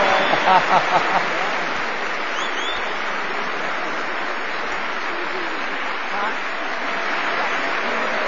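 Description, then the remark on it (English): An audience applauds someone who has just taken an oath of office, a dense wash of many hands clapping that holds at an even loudness throughout, with a few voices calling out near the start. “We're clapping for you.”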